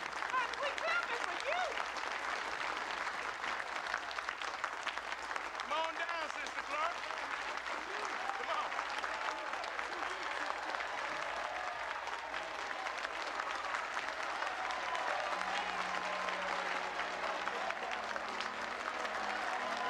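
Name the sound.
crowd clapping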